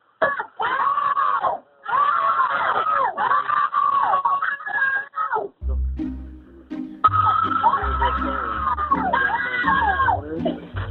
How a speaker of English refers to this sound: If you listen very closely, it sounds like one of the kids actually laughs a little on that last scream. Like, it is so weird an adult is asking them to do this.